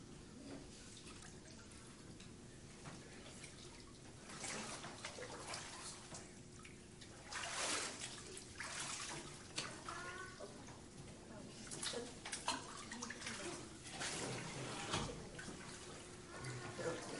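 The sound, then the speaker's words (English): Water sloshes and drips steadily in a warm indoor baptismal pool during a church baptism, with soft splashes and trickles rising and falling, while a voice talks faintly in the background. “It is warm in here. It's like bath water.”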